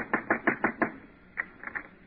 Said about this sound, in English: Costello, knock on the door. I'll talk to that tenant.